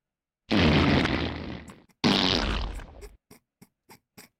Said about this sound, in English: That's epic fart. I know where that comes from.